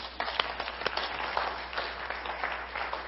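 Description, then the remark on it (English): A crowd applauds steadily, dense overlapping hand claps forming a continuous, moderately loud patter that holds even throughout without a clear rhythm. “Give them a hand clap, would you?”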